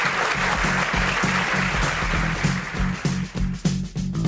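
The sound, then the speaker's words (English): An audience applauds steadily for several seconds for guests who got through a lightning round, a dense wash of clapping over a regular low thumping pulse, thinning out slightly toward the end. “Let's give them a round of applause for getting through the lightning round.”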